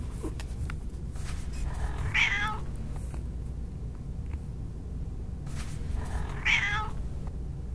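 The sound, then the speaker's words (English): A cat wearing a harness in a park meows twice, a few seconds apart, each call rising and falling, over a low, steady outdoor background rumble. No one speaks. “You're a cat. No one would mistake you for domesticated.”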